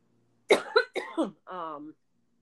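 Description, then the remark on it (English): A quick run of four sharp coughs in succession, followed by a brief voiced throat sound, with silence around them. “sorry, I'm going to cough.”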